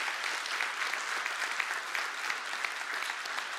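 An audience claps steadily for several seconds, a dense, even wash of many hands with no voices standing out and no break in the sound.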